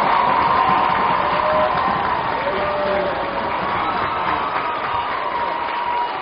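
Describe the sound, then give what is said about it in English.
A big baseball stadium crowd roars and cheers loudly, with clapping mixed in, a dense, steady wall of noise that holds without letting up, after Rainey hits a bases-loaded stand-up triple down the right field line. “Third in, and then Rainey with a stand-up triple down the right field line, and the crowd is going nuts.”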